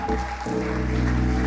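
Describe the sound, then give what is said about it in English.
An audience at a church morning service claps steadily to welcome visiting pastors, a dense, continuous patter of many hands, with sustained musical tones ringing underneath throughout. “So, they're clapping for you guys”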